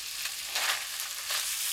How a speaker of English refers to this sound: I'm frying it in butter. Why is it turning into salmon? It's getting a little pink, huh?